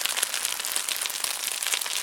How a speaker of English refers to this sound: Let me see if I can find a deep fry sound.